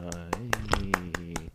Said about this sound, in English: So everyone, give him a round of applause.